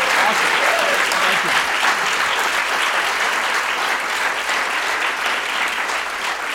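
Sustained audience applause, a dense steady roar of many hands clapping at an even loudness throughout, with no pauses or talk breaking through.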